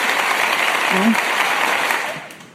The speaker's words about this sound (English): Quite an uproar of applause from the students. I wasn't prepared. Thank you very much.